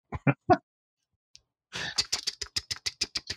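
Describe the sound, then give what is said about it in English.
Sharp mechanical typewriter keys clack in a quick, fairly regular run, preceded by a few separate strikes and a short pause, moderately loud with no one talking; a man typing on his typewriter downstairs, heard through a hollow door. “Dad's on his typewriter again.”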